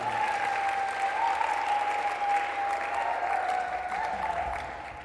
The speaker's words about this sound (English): And you can clap your hands.